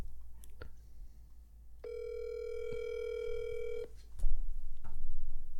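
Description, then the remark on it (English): A phone call rings out with a single steady, buzzy ring tone lasting about two seconds before being answered, framed by soft clicks and a low background rumble, with no one speaking. “He just fucking answers like a newsman.”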